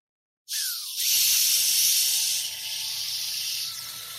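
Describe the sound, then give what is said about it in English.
An airbrush sprays alcohol at lowered pressure, giving a narrower spray: a steady, airy hiss starts abruptly after a brief silence, with a short falling whistle at the start and a faint low hum beneath. No one speaks. “Okay, so it's like the amount that is releasing from the machine. Yeah, the spray isn't so wide.”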